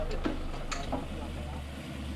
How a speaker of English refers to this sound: With our plan set for the day, we motored out of the marina.